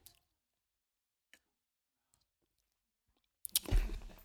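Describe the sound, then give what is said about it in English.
Someone takes a quick sip of a drink. A few faint clicks and taps in near silence lead into a short, loud, wet slurp at the end. “Now, let me take a quick sip real quick.”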